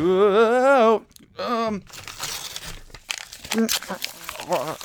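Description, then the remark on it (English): Crinkly paper crumpling with crunchy, irregular bursts as a person chews paper, following a short wordless vocal sound; the rustling continues in uneven bursts to the end. “This paper tastes so bad.”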